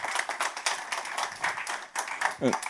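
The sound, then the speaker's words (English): A crowd gives God a hand clap, clapping steadily, a dense patter of many hands at a lively, even level, with a brief voice rising through near the end. “Give God a hand clap, will you please?”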